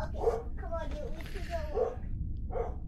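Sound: dog barking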